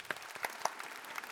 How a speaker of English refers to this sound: That is our show. Thank you for bringing that this game along. You know what we do at the end of this show? We clap it out.